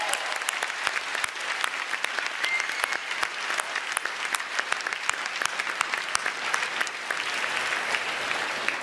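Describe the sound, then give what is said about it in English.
A hall full of people applauding the Toronto police officers in the evening, dense overlapping claps that stay at an even, fairly loud level for several seconds with no voices rising above them. “A big round of applause for the Toronto Police Services this evening.”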